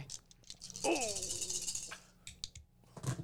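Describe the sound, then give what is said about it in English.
A handful of dice rattles and clatters loudly for about a second, then a few scattered clicks follow as they settle, with faint background noise and no talking. “I need some more dice for this dude.”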